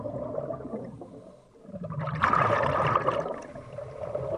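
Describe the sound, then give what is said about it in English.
Muffled, churning water fills the scene, swelling into a louder gush of bubbling and sloshing midway as a diver slips beneath the surface of ice-cold water, thick with green silt, at a shipwreck in Lake Champlain, then settling into a steady underwater rumble. “After a pause to get my bearings, I slip below the surface.”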